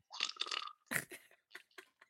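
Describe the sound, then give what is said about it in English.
Someone blows a fart noise with their mouth, a long buzzy raspberry followed by a throaty burst and then three short sputtering puffs, with no speech. “And the servants had to go find some air and then find a bum and make a fart noise.”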